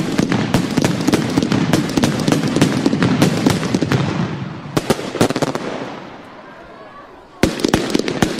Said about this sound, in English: And you heard the fireworks.